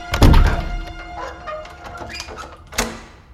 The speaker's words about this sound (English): The man placed her on the shelf, then left, closing the door with that same heavy thud.